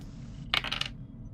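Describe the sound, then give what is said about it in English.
Dice clatter across a hard tabletop in a quick burst of several sharp clicks lasting under half a second, then settle into quiet with no one speaking. “And we have the momentum to re-roll the damage dice for anything that doesn't roll well enough.”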